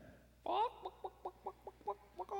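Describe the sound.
A person imitates a chicken with their voice: one drawn-out squawk, then a quick, steady run of about eight short clucks, fairly loud, with no other talking.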